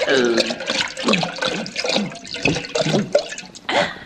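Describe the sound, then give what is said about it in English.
Water sloshes and gurgles in a canteen in a few uneven bursts, mixed with murmured voice-like sounds throughout. “There's still a little water left in it, ain't there?”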